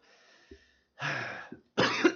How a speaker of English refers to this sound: I think I just swallowed that gnat. Great. Dude, why are you coughing blood? Extra protein.